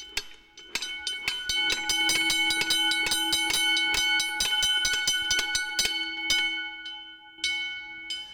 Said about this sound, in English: Well, with the foot pedal, that's what he would be operating his siren with, and that's the gong that would be scaring away the horses and scaring away the dogs and whatnot as they'd be flying down the street with the hooves just a trampling.